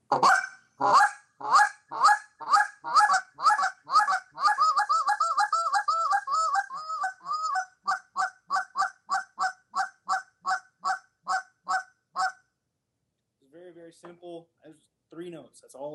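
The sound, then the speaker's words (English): A goose call blows loud, rhythmic clucks, shifting into a drawn-out moaning stretch and then quick double clucks, the three basic notes used to get the attention of geese, ending abruptly before a man's voice speaks briefly. “Cluck, a double cluck, and a moan.”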